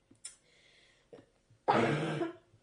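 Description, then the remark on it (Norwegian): A single loud, harsh cough, deliberately a bit louder than an earlier quiet one, bursts out, preceded by a couple of softer throat-clearing catches in otherwise quiet surroundings. “Nå tok jeg det bare litt høyere, bare sånn.”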